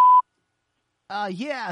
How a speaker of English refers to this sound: The person you're trying to reach is not available. Please leave a message after the beep.